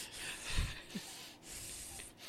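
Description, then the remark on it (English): A person imitates the labored breathing of a chunky female golden retriever: rough, raspy, noisy breaths running continuously, with a brief low snort early on. Fairly quiet, with no talking. “I swear to God, you guys have to hear this obese dog. I can recreate it.”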